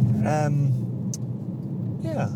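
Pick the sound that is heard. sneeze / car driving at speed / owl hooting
car driving at speed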